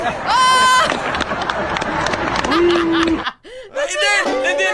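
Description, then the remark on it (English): A graduation audience booing the valedictorian during his graduation speech, a loud, dense wash of crowd voices with drawn-out jeering tones rising over the noise, breaking off briefly before another burst of vocal reaction. “In his own graduation speech where he's the valedictorian, then all of a sudden the audience turns on him and starts booing.”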